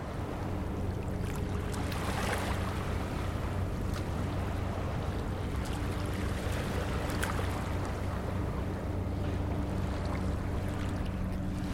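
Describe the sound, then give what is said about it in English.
A steady low engine drone from a Marmaras Navigation freighter slowly passing and spewing smoke, with a constant rumbling hum and faint tonal lines, mixed with soft wind and water wash; no one speaks. “Some freighter that's been slowly going past. I think that's the sound, although it sounds like a plane.”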